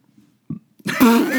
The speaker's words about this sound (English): That burp, like, you can just hear it.